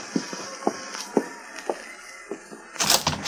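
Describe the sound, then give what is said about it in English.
A door opens: a string of soft, evenly spaced clicks and creaks, then a louder, brief rushing scrape near the end as it swings open. No one speaks. “And don't open that door so wide, you'll blow the lamp out.”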